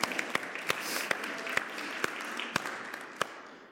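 A room full of people applauding, a steady dense patter of many hands clapping with a few sharper claps standing out, fading slightly toward the end.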